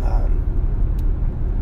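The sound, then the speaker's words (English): Steady low rumble of a car being driven along a road on the ride home, heard from inside the cabin, with a constant engine and tire drone filling the background throughout. “If you guys are listening to this episode, if you're driving your car like me, because this is what this podcast is about, just a short podcast for your ride home, I'd like to get your input.”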